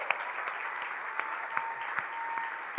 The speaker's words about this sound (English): If you are a veteran, can you just stand up? We just want to give you a hand clap and thank you for serving our country. Come on. Thank you so much.